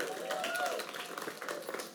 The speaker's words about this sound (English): Thank you, worship team. You guys have a great worship team here at the East Campus. Can I get some applause for that?